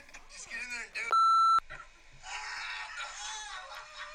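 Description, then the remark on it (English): A loud, steady electronic censor beep cuts in for about half a second, a single flat tone bleeping over a person's name said in a video, amid lively, overlapping speech. “we got to beep his name again.”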